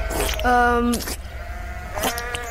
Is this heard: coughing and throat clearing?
no